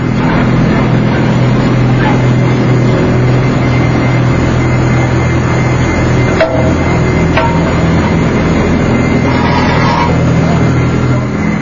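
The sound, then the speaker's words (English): An industrial centrifuge, a large spinning mass separating solids from liquid, hums steadily as it spins, a loud, continuous low drone with layered harmonic tones and a couple of faint clicks partway through. “The operators can tell just by the hum of that machine, there's a harmonic noise emitted, and it's out of balance, and the machine needs to be cleaned.”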